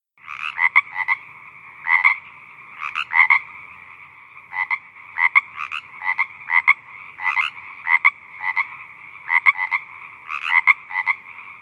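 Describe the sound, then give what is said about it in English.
A frog croaks repeatedly in steady, rhythmic bursts of rasping calls, clear, with short pauses between groups and no voices present. “There was plenty of time for Dan Funk to find his frog.”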